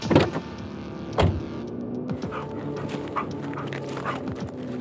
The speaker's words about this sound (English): His canine unit caught wind of a substance and then began barking, although there wasn't any evidence of drugs.